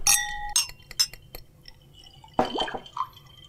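Glasses clink together in a toast several times in quick succession, one holding ginger ale on ice; the first strike rings out clearly before fading, followed by a louder knock and a brief splash of liquid, with no one talking.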